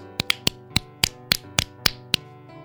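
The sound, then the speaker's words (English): About nine sharp, light claps of the index and middle fingers against the left palm, spaced unevenly, each a crisp snap-like tap, over a soft, steady humming tone with no talking. “And now clap these fingers on your left hand palm. Clap, clap, clap.”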